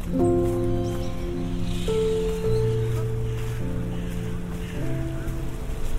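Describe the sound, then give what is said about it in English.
Heavy rain pours down in Lincoln's Inn Fields, a park in Holborn, London, heard from under a tree, as a steady, dense hiss, with low droning tones, likely traffic, humming underneath. No one speaks. “Oh, the rain's really coming down now.”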